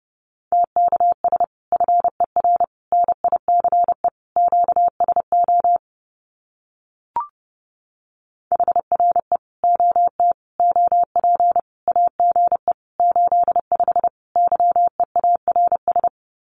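Fast Morse code at about 30 words per minute sending common QSO phrases: a steady mid-pitched tone keyed in rapid dots and dashes, two long runs split by a short pause with a single click, no voices.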